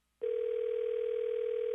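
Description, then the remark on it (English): A telephone dial tone comes on abruptly after a split second of silence when the other party hangs up a call, then holds as one steady, unbroken hum at constant loudness, with no voices over it. “Are you hanging up on me, or is there a problem with the phone?”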